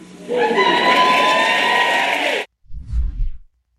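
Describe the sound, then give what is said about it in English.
A crowd at a Joe Biden speech erupts in loud, sustained whooping and cheering for about two seconds, then cuts off abruptly, followed by a brief low rumble. “To wild whoops and cheers, obviously.”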